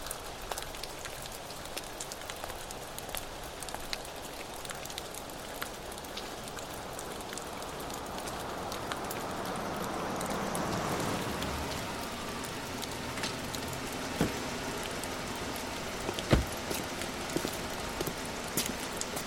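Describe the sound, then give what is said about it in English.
Steady rain pours down in a storm in a dense, hissing wash, with scattered sharper drops and brief taps standing out. A low swell builds midway before easing back to the constant downpour. No one speaks. “Son, what the hell are you doing out here in a storm like this?”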